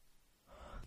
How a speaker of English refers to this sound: I yawned.